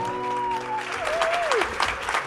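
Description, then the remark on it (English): A live crowd in Edinburgh claps and cheers steadily for a couple of seconds at the start of a live Drunk Women Solving Crime show, with a high whooping voice sliding through the dense, rattling applause. “We're cheering for ourselves!”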